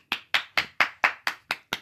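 A short burst of applause: about eight crisp, evenly spaced hand claps in a quick steady rhythm, each sharp and bright with a brief tail, and no talking.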